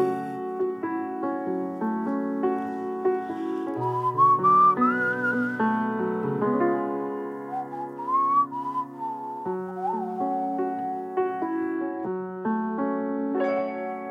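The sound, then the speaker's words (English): A medley of whistled movie theme melodies from Moonlight, Hidden Figures, Manchester by the Sea, Lion, Fences, Hacksaw Ridge, Arrival and La La Land runs for about fourteen seconds, a bright, wavering tune gliding between notes over steady sustained chordal accompaniment, shifting from one short theme to the next with no talking. “Did you catch those? So that was Moonlight, Hidden Figures, Manchester by the Sea, Lion, Fences, Hacksaw Ridge, Arrival, and La La Land.”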